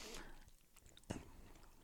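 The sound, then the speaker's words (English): Quiet chewing of a waxy fruit candy: soft sticky mouth noises and smacks, with one sharper click partway through and a faint breathy murmur in the background. “Even after you've chewed on it for a while, it's still a little bit like wax.”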